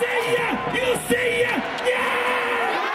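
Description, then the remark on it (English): A KBO baseball stadium crowd cheers steadily, many voices chanting together in rising and falling sung phrases over a constant dense roar, with occasional shouts breaking through. “You know, literally from first pitch to final out, cheering.”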